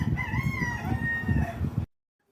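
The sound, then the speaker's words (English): A rooster crows in one long, sustained call, loud, over a dense rumbling background, then cuts off abruptly into silence. “I know, and the rooster in the back gets me.”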